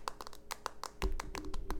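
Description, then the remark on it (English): Quick, irregular fingernail taps of Garcelle texting on her phone in her confessional: a dozen or more light, sharp clicks in uneven bursts, with a low hum entering partway through. “I love that tapping sound, the little tapping of your fingernails to text something.”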